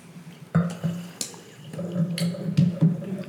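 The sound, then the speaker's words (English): Wine pours into a glass, just a tiny amount, a short burbling stream with a rising, ringing gurgle that lasts a few seconds. No one speaks. “Well, because I remembered I poured a tiny bit, and then you're looking at me from across the table”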